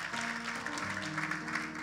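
A church audience claps for the preacher's travelling companion in a steady, dense wash of applause lasting under two seconds, with a low sustained tone humming underneath and no voices.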